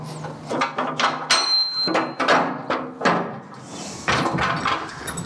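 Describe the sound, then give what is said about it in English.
A heavy nuclear bunker door, set in a grassy mound with concrete government structures on a housing estate just outside York, is dragged and creaked open in a series of scraping, grinding and clunking movements, loud, with a brief metallic squeal partway through. “And here in front of me, there's a big door.”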